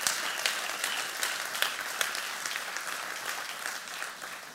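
A steady round of applause from a crowd, dense clapping with a few sharper claps standing out, holding at a fairly even level before tapering slightly at the end. No voices.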